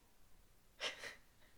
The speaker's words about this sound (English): That was a really big yawn. Yeah, sorry, I didn't mean to be rude. It's okay.